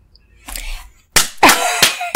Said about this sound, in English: I'm sorry for you guys, I'm clapping in your ears.